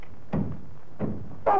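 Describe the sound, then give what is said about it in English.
A hammer lands in dull, heavy thuds as a man fixes a glass-fronted cabinet in a bathroom: two evenly spaced knocks, then a louder third blow with a brief higher ring as he hits his finger, and nothing but quiet between the strikes. “Oh, I've hit my finger with a hammer.”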